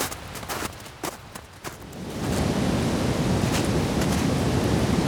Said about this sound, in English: Hogsback is very different in the winter compared to what it is in the summer. The noises of people talking, walking, kids laughing, none of that's there. Even though the waterfalls are always the most dominant sound in the area